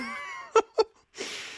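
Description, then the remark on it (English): A drawn-out voiced inhale leads into two sharp, quick bursts, then a breathy, hissing blast of noise, like a sneeze heard on its own at moderate volume. “Oh, God bless you.”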